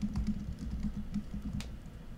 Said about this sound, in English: Are you coding or typing? That was incredible. Did you hear that? Did you? I couldn't hear it. No. Oh, great words per minute. It was incredible. That sounded like one of them stenographers in a court case. It was really impressive.